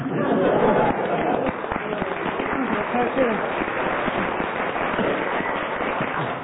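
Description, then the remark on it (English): An audience claps steadily for several seconds, a dense, even patter of many hands at a fairly loud level, with a faint murmur of voices mixed in. “I don't know why you clapped.”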